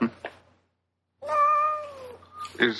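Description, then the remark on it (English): A cat lets out one long, drawn-out, fairly loud meow that slides slightly downward in pitch. Brief, scrappy sounds come before it, and a short squeak follows. “I got all these cats.”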